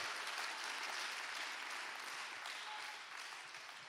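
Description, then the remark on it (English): A crowd claps hands together in praise to the Lord during a sermon, a dense, steady burst of applause, loud and continuous throughout, slowly easing off toward the end with no voices over it. “Would you clap your hands unto the Lord and give him praise?”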